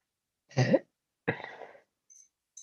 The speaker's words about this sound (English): I just burped.